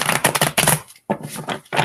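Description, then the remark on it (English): A deck of cards being shuffled for a card reading, with rapid crisp flutters and riffles in quick bursts, a brief pause, then more shuffling. “All right. One more shuffle.”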